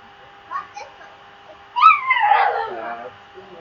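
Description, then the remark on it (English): A dog whines in the background in a high, drawn-out wavering cry that slides downward, preceded by a couple of brief faint whimpers, over a low steady hum. “You hear that dog?”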